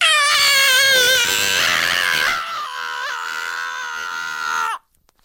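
A loud, high-pitched human scream held for almost five seconds, its pitch wavering and sliding before it cuts off abruptly into silence. No one speaks.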